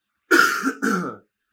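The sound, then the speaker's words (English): A person clears their throat in two quick, rough bursts, a short raspy cough-like hack followed by a second throaty rumble, with no talking around it. “I'm sorry, I've got a little cough.”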